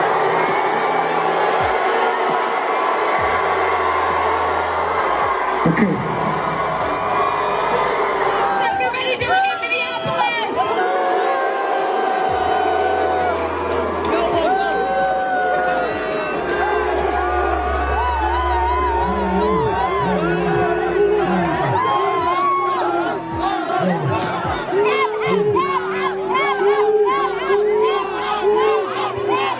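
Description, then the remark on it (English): A large stadium home crowd roars continuously, a dense wall of shouting and chanting voices that swells and surges throughout, with wavering cries rising above the steady din. “That's in front of her, literally her home crowd.”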